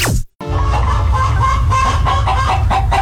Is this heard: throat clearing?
no